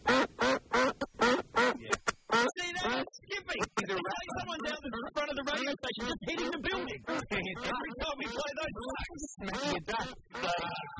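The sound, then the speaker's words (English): Glitchy duck quacking from a corrupted recording played on a computer, stuttering and skipping like a damaged CD. A few loud separate quacks lead into a dense, choppy stream of chopped-up quacks repeating rapidly for several seconds. “Someone's put those ducks on the computer. And it's as if somebody has buffed the CD player.”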